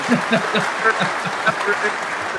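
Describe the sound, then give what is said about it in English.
A clap track sound effect: steady applause-like clapping with crisp, repeated hand claps over a continuous bed of crowd noise, holding an even loudness throughout. “Let's do a clap track.”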